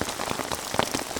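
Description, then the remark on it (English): Steady rain patters on a tarp sheltering two people and their gear, a dense wash of small taps with a few louder individual drops standing out, no voices. “We got kind of get interrupted talking about rain.”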